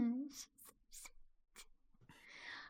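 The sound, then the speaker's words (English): Several short, dry clicks land at uneven intervals, fairly quiet, after a brief tonal sound at the start. A longer scratchy rustle closes the sequence. “The clicking, you know what? That reminds me.”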